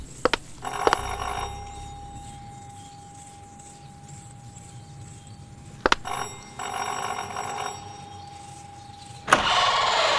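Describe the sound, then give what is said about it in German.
A doorbell rings twice at the door of a villa in the evening, each a long, steady, mid-pitched tone lasting several seconds, with a brief click before each ring and no voices. “An diesem Abend sah zunächst alles gut aus, als er an der Tür einer Villa klingelte.”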